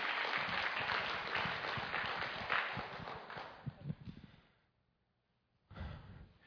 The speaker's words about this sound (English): You were dancing before, and now you're clapping and shouting. It's very unnerving.